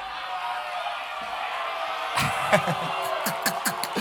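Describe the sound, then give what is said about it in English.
Women in an audience erupt into loud, high-pitched screams and cheers, sustained and overlapping, with sharp whoops bursting out over the noisy din. “Ladies, I'll respect you more if you scream on your own stuff too.”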